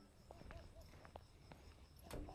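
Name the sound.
footsteps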